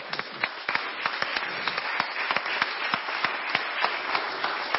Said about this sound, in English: I just want to tell you how excited, and I want to give the Lord just just a clap offering, Lord.